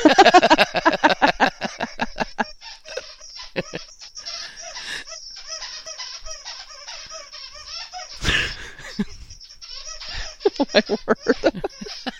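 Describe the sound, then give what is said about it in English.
Bunny, a pet dog, chews one of his outdoor squeaky toys, producing rapid, high-pitched squeaks in fast rhythmic bursts at the start and end, with steadier squeaking between and a short crunchy rustle midway. “Bunny's squeaky toys are his outside toys.”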